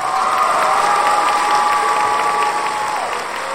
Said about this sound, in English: Round of applause, guys.